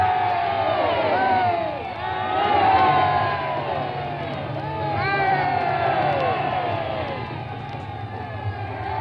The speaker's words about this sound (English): Three ringing cheers there as their majesties leave the Indians and are moving slowly back toward the royal automobile.